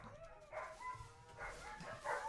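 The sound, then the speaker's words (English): A dog whimpers and lets out short, high-pitched yelping barks, several whiny bursts in quick succession, fairly soft, with no one talking. “Oh, I thought that was her crying.”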